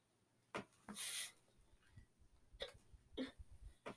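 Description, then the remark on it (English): A person hiccups several times at irregular intervals, each a short, sharp burst with a breathy edge, without any talking. “got the hiccups.”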